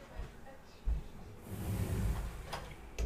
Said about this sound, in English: Oh my god, hold on. Hold on, let me close this damn door.